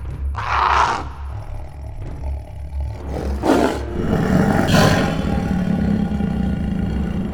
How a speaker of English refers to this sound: A much louder ree, immediately followed by a roar, reverberated from all directions.